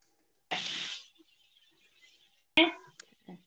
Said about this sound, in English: Also, I'm so sorry to the audio listeners that are just hearing sizzling and us yelling and shit. Garlic, right?